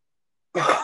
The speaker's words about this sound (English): Did you cover your cough? No, I coughed right into your face.